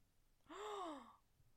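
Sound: loud gasp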